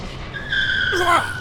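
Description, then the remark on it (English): A car zooms past, its high tire-and-engine whine holding steady and then sliding sharply downward in pitch as it passes, over a low steady road rumble. “Her eyes lock on his as the car zooms past.”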